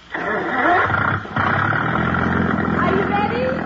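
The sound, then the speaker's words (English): A motorboat engine, about to tow a water skier, starts with a loud, rough roar, drops out for a moment, then catches again and settles into a steady, throbbing drone. “Now, I'll start the motor.”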